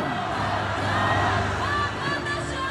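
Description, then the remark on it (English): A large crowd at a Taiwan People's Party election rally cheers and shouts continuously, a dense wash of voices with whoops and raised calls blending together at steady, loud volume throughout, after the party's presidential candidate vows to fight to the end. “And the crowds went wild because he's essentially saying there, I'm not going to work with anyone else.”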